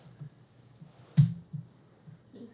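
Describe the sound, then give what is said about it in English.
Quiet gnawing from a puppy chewing on a bone: soft irregular low thuds with one sharper crunching scrape near the middle, and no voices. “This puppy is chewing on a bone.”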